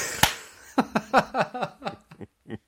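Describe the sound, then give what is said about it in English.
One sharp, loud hand clap rings out alone, followed by a quick string of short, rhythmic vocal bursts that sound like laughter. “Okay, okay. Clap.”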